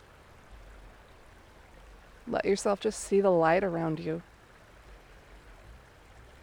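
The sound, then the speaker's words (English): A soft, steady rush of flowing stream water runs throughout, fairly faint and constant, while a calm voice speaks briefly over it in the middle. “Hear water flowing.”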